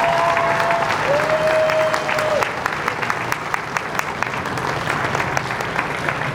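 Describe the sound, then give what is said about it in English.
An audience applauds steadily throughout for the Chicano Park Steering Committee, a dense wash of many hands clapping at once, with crisp individual claps standing out as the ovation carries on at a moderately loud, even level. “Let's give them a nice round of applause for their commitment to wildlife.”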